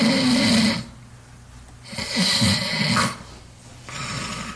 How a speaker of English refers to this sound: Can you turn up the volume so we can hear the snoring, please? Nice, good snore. Another good snore. Great.